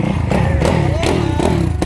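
A motocross race bike engine revs, its pitch climbing briefly amid a steady, rough mechanical drone with clattering bursts, loud throughout; the bike has very little flywheel weight, so it revs up really quickly.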